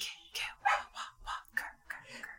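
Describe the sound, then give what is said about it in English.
A dog outside a door barks in a quick, steady run of about seven short, sharp barks, moderately loud and with no voices over it. “There's a skinwalker outside the door. Yeah. It's howling at us.”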